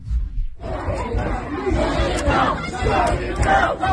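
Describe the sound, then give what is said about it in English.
A dense protest mob roars and shouts continuously outside a door at a University of New Mexico event, many overlapping voices yelling at once in a loud, chaotic din, with sharp cries rising above the constant babble, while people inside try to keep the door closed. “Pulling, people trying to keep the door closed because this screaming mob outside.”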